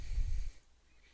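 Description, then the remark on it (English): A single loud, breathy gasp made by a voice, a sharp rush of air lasting about half a second before cutting off into near silence. “An elf, who also was getting money, was leaving, and as he was leaving, you just heard him gasp loudly, which caused your characters to turn and look at him”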